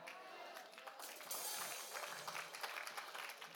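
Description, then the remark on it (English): An audience bursts into applause after a quote from T.D. Jakes is read, a dense wash of many hands clapping that swells after the first second and holds steady at moderate loudness. “You can read his quote and everybody claps after that.”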